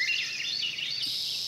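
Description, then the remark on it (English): A dense dawn chorus of many birds singing at first light in July, overlapping whistles and trills forming a steady, continuous wash of song with no voices. “In July, you might have heard this dawn song. Many birds singing at first light.”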